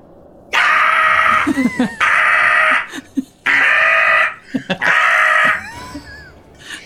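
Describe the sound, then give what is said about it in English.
A person imitates a Canada goose: four loud, harsh, nasal honks in a steady sequence, each lasting close to a second, with brief squeaky gliding sounds between them. “So it's a Canadian goose, right?”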